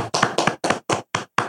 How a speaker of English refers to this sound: Clap it up for my boy.